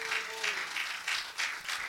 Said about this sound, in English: We'll give Jesus a hand clap of praise tonight.